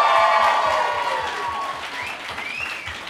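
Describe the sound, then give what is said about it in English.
A crowd breaks into steady applause, dense clapping with a few cheers rising over it, loud at first and gradually tapering off over a few seconds. “Round of applause.”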